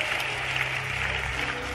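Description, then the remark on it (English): An audience at a church service claps together as a clap offering to Jesus, a dense, steady wash of applause that holds at an even loudness throughout, with faint voices mixed in beneath the clapping. “Somebody come on, give a big clap offering to Jesus.”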